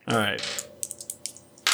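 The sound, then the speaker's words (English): Two dice are rolled again, giving a quick run of light, sharp clicks and rattles that taper off over about a second. A brief voice comes just before the tumble. “So I'll roll these 2 again.”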